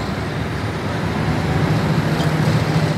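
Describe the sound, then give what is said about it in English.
The single diesel engine of the ferry boat Lonnie Joe roars to life, pushing its car barge from the bank of the Ohio River between Crittenden County, western Kentucky, and southern Illinois: a steady deep, throbbing low hum under a broad wash of rumbling noise, swelling slightly louder partway through, with no voices. “Cars rumble onto the barge. The barge is unchained from the dock. And the boat named Lonnie Joe roars to life, pushing from the bank of the Ohio River.”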